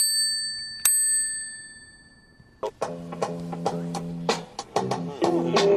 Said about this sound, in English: And we're going to have the closing bell now because I'm stopping, going back to my car, and going home to cook supper.